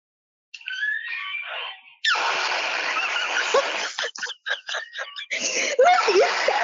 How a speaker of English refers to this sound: there's actually so many, but this is just like the fart soundboard. There's like stuff with like Among Us and like just goofy ass sounds.